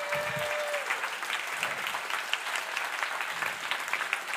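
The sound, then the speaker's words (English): An audience at a stage show claps steadily for the performer's mom and wife in a dense, continuous wash of applause that holds at an even level for several seconds, with a brief high tone sounding near the start. “Okay, stop clapping.”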